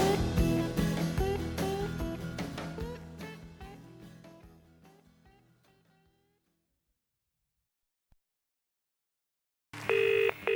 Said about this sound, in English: The phone rang. It was a call from Larry.